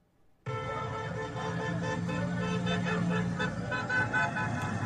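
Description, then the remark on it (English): Car horns blare continuously from about half a second in as Trump supporters honk outside Walter Reed hospital, several overlapping honks forming a loud, sustained din with street noise underneath; no one speaks. “People honking.”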